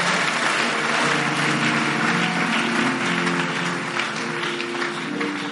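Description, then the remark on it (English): An audience claps hands in a dense, sustained burst of applause lasting several seconds, loud and steady, with a faint murmur of voices and low tones underneath. “Clap your hands, you have victory weapons.”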